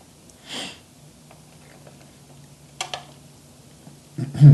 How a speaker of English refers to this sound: I want you to listen to me for a second and listen to the sound of me chewing. And I want you to guess what dessert I'm eating right now.